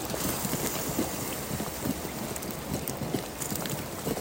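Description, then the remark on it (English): Water boils steadily on a Solo Stove camp stove, a dense, irregular stream of bubbling pops and gurgles over a constant hiss, moderately loud and unbroken throughout, with no one speaking. “You can hear the water boiling now. I'm on the solo stove.”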